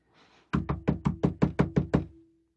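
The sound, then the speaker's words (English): Eight heavy, rapid knocks pound loudly on a wooden door in a steady, insistent rhythm, each with a hollow thud, following a brief soft rustle. “You go up and you pound on the door.”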